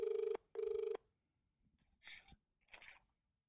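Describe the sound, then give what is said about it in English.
A telephone ringback tone on an outgoing call sounds once as a double burst: two steady, mid-pitched buzzing pulses in quick succession, followed by quiet and a couple of short, breathy rustling noises. “Fuck it. Let's call him.”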